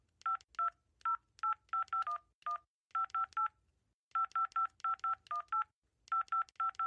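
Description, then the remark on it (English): A rapid series of electronic keypad beeps as a phone number is dialed to call someone, short two-tone presses arriving in quick bursts with brief pauses between groups, clear, with no talking. “Jeez, I'll just call someone.”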